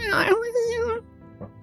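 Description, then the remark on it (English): A voice imitates the cry of a creature brushing past someone's head, a wavering, whining wail that sounds like a kitten and an infant at once, held for about a second, right by the ear and fairly loud, then a short softer sound. “And it's like that Doppler effect where it sounds like a kitten and an infant at the same time, right by your ear.”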